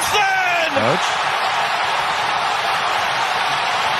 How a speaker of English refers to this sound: It sounds like the whole stadium's roaring for USA.